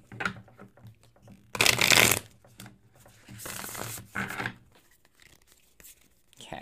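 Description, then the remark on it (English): A deck of tarot cards is shuffled for a tarot reading in a few bursts: a loud riffling flurry, a pause, then two more papery shuffles, with soft handling noise between them. “So let's get a good shuffle.”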